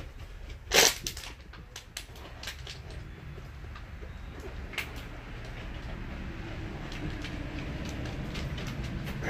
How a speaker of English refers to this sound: We're going to put some pressure on it, and we're going to launch the lid out through yonder in the wild blue yonder.